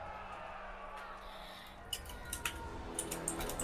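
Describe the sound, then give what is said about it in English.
Quick, irregular clicks of keyboard typing, someone typing out a prediction, start partway through and continue in bursts over a low background hum, moderately loud. “We had an Odin is with us with a lot of typing in the background”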